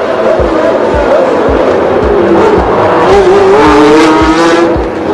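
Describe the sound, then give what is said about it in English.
Loud, high-pitched Formula One racing engines whine and roar continuously during a race, their pitch sliding up and down as the cars pass, with a faint crowd murmur and regular low thumps underneath. “That's Lauda off, that's Niki Lauda off, and Lauda has damage, we think, to one of the front wheels of the car, the front right-hand wheel.”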